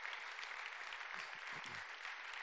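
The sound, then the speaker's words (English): An audience claps their hands to the Lord in a steady, dense wash of applause, many hands at once at a moderate volume with no voices standing out. “I think that deserves a hand clap. Everybody just clap your hands to the Lord.”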